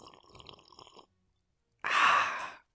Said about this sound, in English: With me is my special guest, a small sip of whiskey. Here is what my guest sounds like.